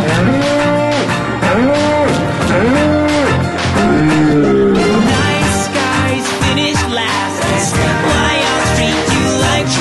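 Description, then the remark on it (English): A cow moos loudly several times in quick succession, each call a drawn-out, rising-and-falling low bellow, over a dense, busy background that continues after the mooing stops. “Cows go moo.”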